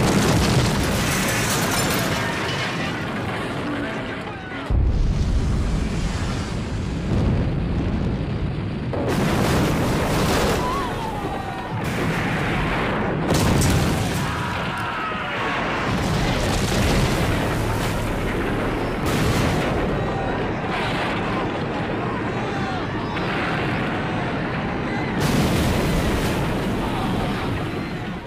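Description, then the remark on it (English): A loud, continuous barrage of explosions, with repeated heavy booms bursting every few seconds over a roaring, rumbling backdrop, as an oil rig and all its buildings blow up in stages in a film scene. “And a spectacular explosion there, too, where Rig blows up and yeah. everything blows up.”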